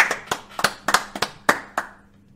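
One person claps about nine times in a quick, slightly uneven burst, each clap a sharp, bright smack, then the claps stop and the sound fades out. No one speaks.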